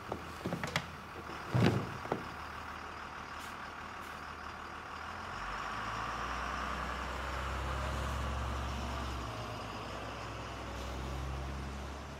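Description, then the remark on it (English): A few sharp clunks and a brief hiss, then a bus engine settles into a steady, low rumble as it drives along the street, with no talking. “As the bus goes down the street, he sees an older black man in his 60s shines a white man's shoes.”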